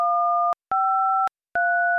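touch-tone keypad tones

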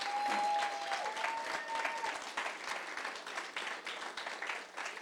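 audience round of applause

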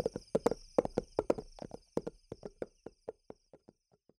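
horse hooves clip-clopping

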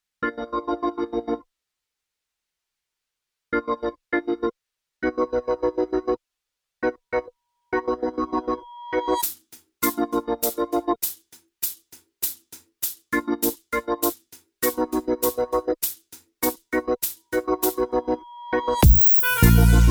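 song playing

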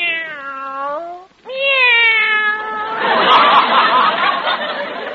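cats meowing

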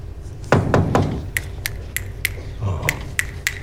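finger snapping

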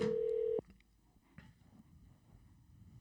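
phone call ringing tone

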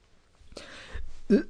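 throat clearing

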